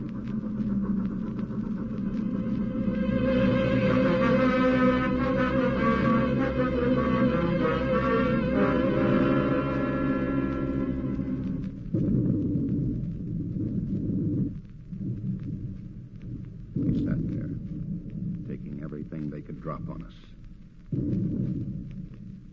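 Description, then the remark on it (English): Underwater depth charge explosions from a destroyer making a run on a submarine: a dense churning roar for about ten seconds, then a string of deep, heavy booming rumbles separated by brief lulls, with no voices. “Rig for depth charges.”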